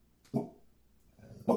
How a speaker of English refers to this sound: All right, sorry about that. We had to pause for a second. Yeah, because our dog was barking. Yep, it was kind of loud.